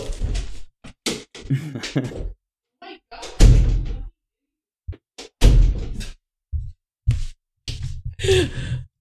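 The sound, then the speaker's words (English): A table topples over with heavy wooden thuds and clattering, several loud impacts in irregular bursts separated by short pauses, with a few breathy sighs and gasps mixed in. “They knocked down a table.”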